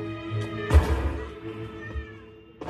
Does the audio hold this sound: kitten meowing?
yes